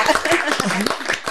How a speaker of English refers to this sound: Okay. Clap it up. Oh, yes.